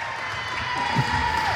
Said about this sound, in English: Big rousing welcome to the team from the crowd here,